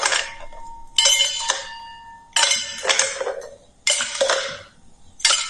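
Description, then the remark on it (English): Half a dozen ice cubes clatter into a metal cocktail shaker in a series of bright, ringing clinks, spaced irregularly, fairly loud with no talking. “then get a shaker, and I put half a dozen ice cubes in it.”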